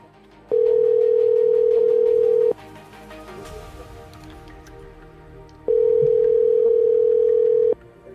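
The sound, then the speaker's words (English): A telephone line tone while placing a call: two loud, steady, single-pitched tones, each about two seconds long, separated by a pause of quiet background. No one speaks. “Oh, he really is making a phone call.”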